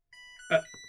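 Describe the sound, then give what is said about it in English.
A short electronic alert tone rings out, sustained steady pitches joined midway by a brief louder burst, then a couple of quick fading blips. Nobody speaks. “There I am again. Beep boop beep boop.”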